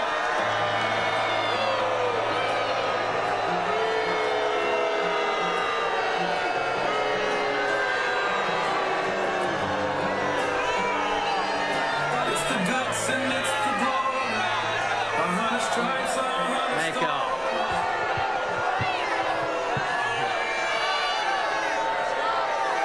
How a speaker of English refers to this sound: Donald Trump, he was in Pickens, South Carolina, and out came Lindsey Graham. And he got booed mercilessly. Listen to this.